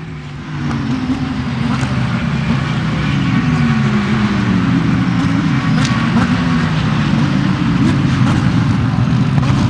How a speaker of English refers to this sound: This will be our first time, well, my first time watching the GT3s on track. We just saw the Lamborghini. Here they come. And the leader has made its way to us. We'll listen in.